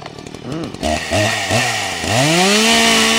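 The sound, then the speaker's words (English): A chainsaw engine revs in a few quick, loud bursts, then climbs into a sustained high-pitched whine, running on its own. “People are sharing their reactions to finding out what the actual chainsaw was invented for.”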